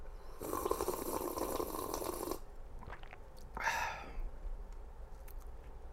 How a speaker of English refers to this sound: So why don't you give that a sip? Because this is my regular bog standard. I drink it every day, water. It's a good sip. I'm going to take another one.